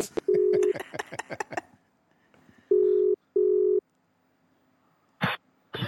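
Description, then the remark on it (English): Electronic clicks give way to the ringing tone of an outgoing phone call placed to a guest: a short steady beep, then a quick double beep after a pause, clear and fairly loud with no one talking. “Oh, it's ringing and everything.”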